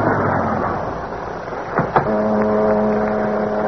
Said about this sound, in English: and to add to the eerie darkness of the night along the waterfront, heavy mist had risen, and it swirled and eddied about the long black car, which, moving like a sinister shadow, finally came to a stop alongside a deserted waterfront building.